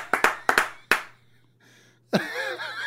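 Five sharp hand claps in quick uneven pairs, loud and crisp, then a brief pause before an excited, wavering vocal cheer takes over.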